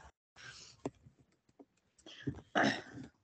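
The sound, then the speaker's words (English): A laptop is moved aside to keep a black cat from lying on it, with soft shuffling, a few light clicks and knocks, then louder scraping and rustling bursts toward the end. Nobody speaks. “So if I wanted my computer to stay safe, my computer had to move.”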